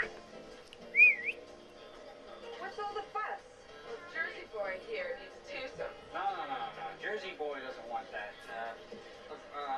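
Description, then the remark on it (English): Someone attempts a whistle, producing a brief rising-and-falling tone near the start, followed by breathy, uneven tries under continuous voices talking. “Has anybody tried to whistle like that?”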